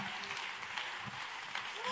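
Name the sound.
audience clapping hands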